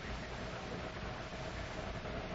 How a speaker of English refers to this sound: It's a car.